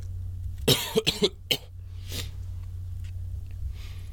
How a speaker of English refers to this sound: As I cough up a lung here, we have the meanest matchmaking I have ever seen.